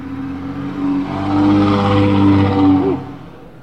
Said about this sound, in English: That was a loud car. Isn't it funny the dope mobiles are all that loud? Yeah. Like, every dope car is that fucking loud. Yeah, I mean, it sounds like a dump truck or something.